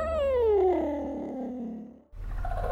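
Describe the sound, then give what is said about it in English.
An endangered African wild cat, Africa's most endangered cat, lets out a loud, drawn-out yowl that slides downward in pitch for about two seconds, alone, then cuts abruptly to a low, steady rumbling noise. “This groundbreaking scientific breakthrough offers another ray of hope to Africa's most endangered cat.”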